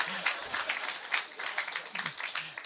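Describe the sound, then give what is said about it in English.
A live audience applauds a question about how the author manages to write so many books, a dense steady patter of many hands clapping at once, with faint murmuring voices underneath. “So, oh, they're clapping for that.”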